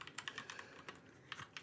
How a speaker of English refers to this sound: Oh, I love typing on this keyboard.